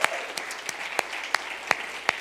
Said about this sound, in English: And so I may not be saying this so much for the benefit of those seated today, but for those behind the desk there in the sound booth, for those in our production room, I am saying that. Can we all give those people a big round of applause? Amen.